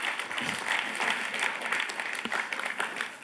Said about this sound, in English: Give the Lord a huge round of applause. Yeehaw!